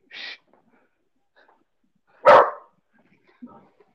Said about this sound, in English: What are you barking at? One sec, I see what my dog's barking at. I can hear the dog barking in the background. He's just hearing somebody next door.